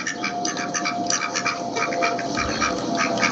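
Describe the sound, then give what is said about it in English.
A rapid run of nasal, buzzy duck quacks repeats steadily for a few seconds, loud, with no voices, like a short comedic duck sound effect. “You know, I hate to say this, but that calls for a couple duck alert.”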